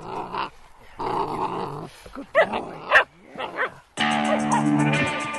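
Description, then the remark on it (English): A Karelian bear dog puppy, Titong, the National Park Service dog to be stationed in Denali National Park, barks and growls in a string of short, uneven bursts with a few high yips, ending in a longer, continuous growling snarl. “If you want to see what a Karelian bear dog puppy looks like, and I suggest you do, check out Titong on our Instagram at The Wild Pod.”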